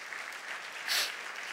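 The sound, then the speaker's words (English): An audience claps for Jesus Christ together in a steady, dense wash of applause that swells briefly louder near the middle before settling back, with no voices standing out. “Let's clap our hands to Jesus Christ.”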